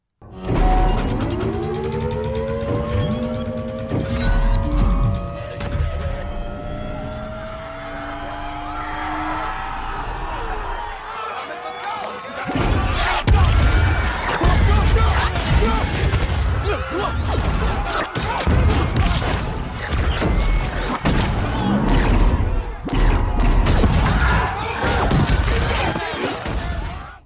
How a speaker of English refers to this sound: that was just 20 seconds of explosions. I know, because basically every single clip that was available to us was explosions. And that's essentially what this film is about, is just lots of explosions, action after action.